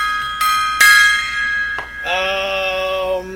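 A metal gong is struck several times in quick succession, each hit ringing out loud and bright, with the final strike humming on in a lower, sustained tone.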